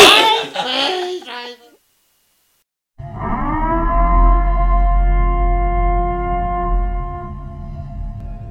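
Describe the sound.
Brief voices and laughter give way to a pause, then an ominous civil defense siren swells in and holds a loud, steady, droning wail over a deep rumble until the end.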